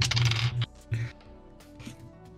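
Dice rolled for an insight check clatter across a hard surface in a quick rattling burst, then a second shorter tumble, settling into a few faint clicks; fairly loud, with no voices.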